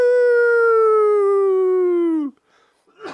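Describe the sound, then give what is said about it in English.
A person vocally imitates the creature howl from Harry and the Hendersons, joking about how mounted police would pull over a vehicle: one long, loud, sustained tone of about two seconds, holding steady and slowly sliding lower before cutting off, followed by a brief breathy noise. “They sit there and make the Harry and the Henderson sound.”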